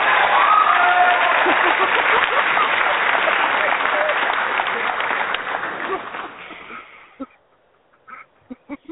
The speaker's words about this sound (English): And the applause is...